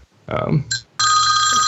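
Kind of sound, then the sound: signal or alarm, telephone ringing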